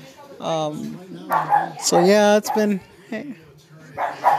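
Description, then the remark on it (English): Dogs bark repeatedly, a run of loud, uneven barks mixed with higher yips and a whiny edge, coming in clustered bursts with brief pauses between them. “I'm sorry, my dogs are barking because I think we have company.”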